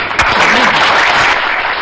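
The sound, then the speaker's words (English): A steady burst of dense clapping fills the whole moment, with a brief whoop of cheering rising over it near the start, loud and unbroken throughout. “But before we do, a quick party and applause and excitement.”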